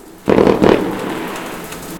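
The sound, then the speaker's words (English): Two loud fireworks explosions go off in quick succession, each a sharp booming crack, followed by a fading crackling rumble that lingers afterward. “Not a tutorial nor a tech review, but a platform where, for example, sounds of a printing house, howling Arctic winds, snowboarding, and fireworks can be heard.”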